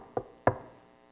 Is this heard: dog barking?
no